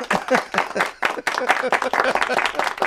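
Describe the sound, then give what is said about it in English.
A burst of applause sound effect: dense, steady crackling claps for about three seconds, with crowd voices and cheers blended underneath, fairly loud throughout. “We didn't have any applause, but yeah. Now we do.”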